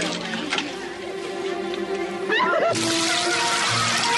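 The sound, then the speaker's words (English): A steady wash of water sound swells into a loud, sudden gush as a bucketful of water is poured over a woman's head, with a brief vocal squeal just before the splash. “And of course, he pours a bucket of water over her head.”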